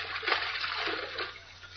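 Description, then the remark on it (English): Mr. Kent jumping into water and splashing about, a steady churning wash of sloshing and spattering that stays even for the whole moment, with no talking. “What are you jumping in the water for, Mr.”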